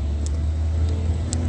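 Steady low rumble of a car on the road in traffic at 8:55 a.m., fairly loud, with a constant hiss of tyre and engine noise and no clear rise or fade. No one speaks.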